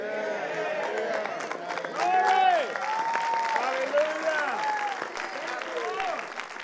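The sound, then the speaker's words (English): An audience applauds steadily for several seconds, a dense patter of clapping that swells briefly early on, with scattered voices calling out and cheering over it. “Okay, by the third or fourth time, we will finally get an applause.”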